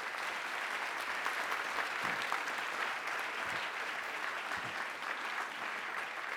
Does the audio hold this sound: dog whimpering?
no